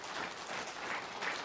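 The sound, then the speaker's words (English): A crowd applauds the worship team steadily, many hands clapping in a dense, continuous patter with no individual claps standing out, holding an even level throughout. “But I do want to say a special thank you to our worship team, all of them, because, yeah, clap for them, because they...”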